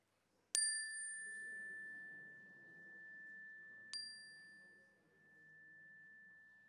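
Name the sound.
chime ringing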